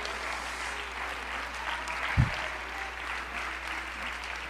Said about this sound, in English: Oh, come on, clap your hands unto the Lord today.